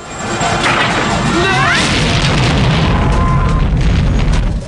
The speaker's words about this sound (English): Troutman looks up as the chopper explodes.